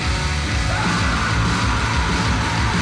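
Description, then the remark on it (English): Loud, dense heavy hardcore music with harsh yelled vocals over a thick wall of distorted guitars and pounding drums, sustained at full volume throughout. “It's a lot of yelling. Tidal wave of noise.”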